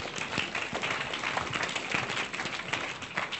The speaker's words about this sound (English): So let's give yourselves a round of applause.